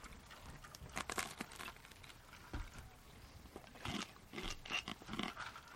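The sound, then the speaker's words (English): Irregular crunching from someone chewing food, a series of short, crackly bursts spread across several seconds with brief pauses between bites, fairly quiet and with no talking. “Can they hear you crunching?”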